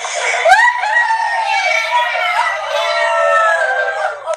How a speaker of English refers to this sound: the kids' team went bananas. They cheered wildly and did a victory dance.